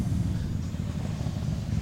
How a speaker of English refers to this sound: Motorbike's back again.